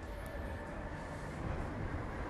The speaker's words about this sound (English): oh, electric car. I guess that's the future of a car, yeah? More electric.